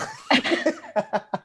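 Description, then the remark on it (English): A deliberate, pointed coughing fit: a rough, drawn-out cough followed by three short, sharp coughs in quick succession, fairly loud, with no talking. “Cough, cough, cough, the ass.”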